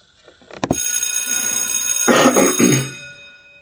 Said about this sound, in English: Hey, hey, hey, all right, school is in. When you hear the bell, it's time for our message.